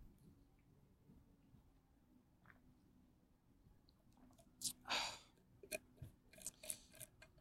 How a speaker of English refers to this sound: A little sip.